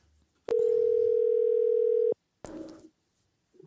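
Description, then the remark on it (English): A single loud, steady electronic ring tone of a telephone line sounds for about a second and a half as a prank phone call is placed, then cuts off, followed by a brief muffled burst like the call being picked up. “Are you ready for the last song? I am. Or phone call.”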